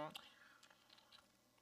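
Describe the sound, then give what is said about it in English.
A brief vocal sound opens, then a quiet sip of champagne with a splash of orange juice follows: soft wet slurping and little mouth clicks scattered over about a second. “So we're going to sip my champagne while we talk about these various topics.”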